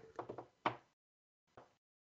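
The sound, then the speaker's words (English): A door slides open just a crack: a quick run of sharp wooden knocks and a louder clack, then a short pause and one final clunk. “The door slides a crack.”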